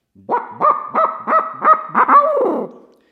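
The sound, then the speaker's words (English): A barred owl laugh blown on an owl hooter call (hoot stick): a quick run of six rising-falling hoots, then a drawn-out, descending wavering cackle. Loud, with no one speaking. “And then I gave them the old, you know, the old laugh, the barred owl laugh.”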